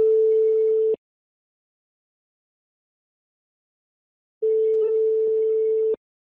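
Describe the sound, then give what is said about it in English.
Two bursts of a steady electronic ringback tone over a phone line as a call is placed to a man who does not pick up, separated by a few seconds of silence, each about a second or so long and fairly loud. “See that thing ring?”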